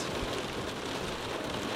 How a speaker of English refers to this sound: It reminds me of monsoon weather, you know, like just really, really, really intense rain. It's gonna last probably some time, and I think there'll be interesting floods to see on the way back.